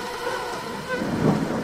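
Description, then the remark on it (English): Heavy rain pours down at night in a steady, dense hiss with a low rumble underneath, fairly loud, continuing without a break and with no voices. “Pascal says it rained so hard that first night, sleeping next to the bar, that he basically never slept.”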